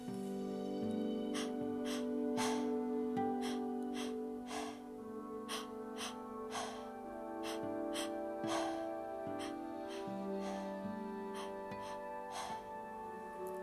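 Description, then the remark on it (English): Quick, rhythmic breaths drawn in and blown out again and again, fairly loud, in a breathing exercise done over a steady bed of soft sustained music, with no talking. “So keep letting that air in and keep blowing it out.”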